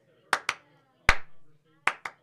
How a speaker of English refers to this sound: So let's do an outro song. If you're going to clap, maybe a little further away from the mic.